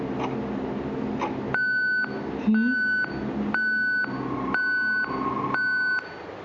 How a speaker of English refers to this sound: That night, one of her patients rang the call bell, 3 o'clock in the morning.